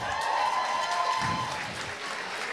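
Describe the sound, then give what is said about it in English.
An audience claps steadily for a few seconds, a dense, even patter of many hands at a fairly loud level, with some crowd murmur mixed in, answering a performer's call for the good women in the room to clap. “You meant your claps just now.”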